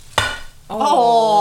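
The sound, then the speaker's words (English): A single sharp clink struck on a glass table rings out briefly, then a steadier bright, tonal ringing swells in and holds to the end. “I don't have glasses, I can clink. That's a glass table.”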